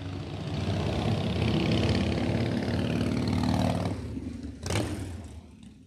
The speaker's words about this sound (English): We just had a motorcycle come by, so I just turned the mic down.